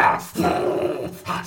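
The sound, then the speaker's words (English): A dog, carried in a papoose, growls and barks angrily in a few loud bursts, with a brief pause between them and a rough, throaty edge to each sound. “He is flipping out, yelling, barking, growling. He is angry.”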